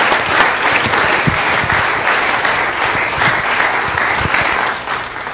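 Steady, loud applause from a church audience welcoming a missionary, a dense wash of many hands clapping that holds for several seconds before easing slightly at the end, with no talking.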